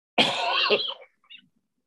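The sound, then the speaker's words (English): A single harsh cough bursts out loudly and tapers off, followed by a faint, short throaty sound a moment later, then quiet. “Hear me coughing?”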